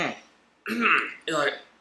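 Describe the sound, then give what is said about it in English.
Two loud, harsh coughs burst out in quick succession, the first longer and raspier, the second shorter, after a brief lead-in sound. “You turn to the side and you cough really hard.”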